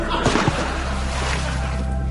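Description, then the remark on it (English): A short, loud splash of something plunging into water, a broad rushing burst near the start that settles into a steady, low watery wash and hum. “Now, let us dive.”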